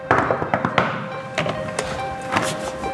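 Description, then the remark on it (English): Several sharp, solid knocks on Ron Kuby's office door, fairly loud, spaced unevenly over a few seconds with a faint steady hum in the background. “Please knock loudly.”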